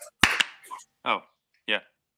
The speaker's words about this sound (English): Now, and then it's 3, 2, 1, clapping hands.